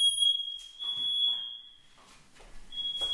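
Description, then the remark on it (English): A shrill, steady smoke alarm tone, set off by hookah smoke, blares loudly for about a second and a half, cuts out, then starts sounding again, with faint background voices and movement between. “Smoke alarm because of the hookah.”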